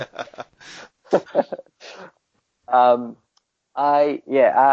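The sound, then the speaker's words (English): Quick bursts of small plastic ticks from a computer mouse scroll wheel being spun, interleaved with people talking and voiced sounds. “No, I think it's the scroller on my mouse.”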